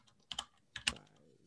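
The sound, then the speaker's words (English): Computer keyboard typing, two quick clusters of sharp key clicks about half a second apart, fairly quiet, with no voices. “I am hitting all the wrong buttons on my keyboard.”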